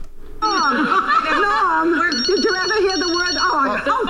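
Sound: telephone ringing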